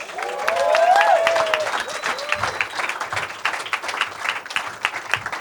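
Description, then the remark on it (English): A crowd bursts into steady, dense applause for a guest from Frugal, lasting several seconds, with a rising cheer or whoop early on before the clapping continues on its own, gradually thinning. “Big hand for our friend from Frugal,”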